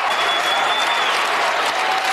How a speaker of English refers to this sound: Thousands of people cheering. Ban every semi-automatic rifle. NRA took a lot of heat last night at that CNN forum.